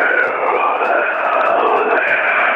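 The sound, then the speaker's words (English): Heavy, rasping breathing and hissing into a microphone, a loud continuous breathy roar that swells slightly without pause for a few seconds, with no words spoken. “Sir, can you stop with the heavy breathing and hissing?”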